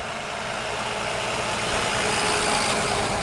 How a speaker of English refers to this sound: Yeah, there is a lot of noise going on. There is a car, a truck now coming from the right.